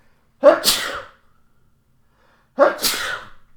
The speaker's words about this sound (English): I'm going to sneeze.